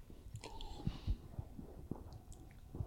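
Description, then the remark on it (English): Sips of a barrel-aged drink, soft wet slurping and swallowing with small mouth clicks and gulps at an uneven pace, quiet, no talking. “Let's do another sip of it, dude.”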